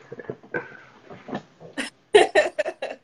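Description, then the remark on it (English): A dog sitting in its owner's lap barks at the door in a quick run of short, sharp yaps that grow louder toward the end, with softer muffled sounds before them and no one speaking. “He's barking at the door right now, so he might do some barking soon.”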